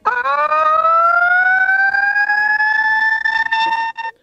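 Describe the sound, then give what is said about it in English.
A man mimics a siren with his voice, holding one loud, steady wail that slowly rises in pitch for about four seconds before breaking off abruptly. No one speaks over it. “The Phantom Siren.”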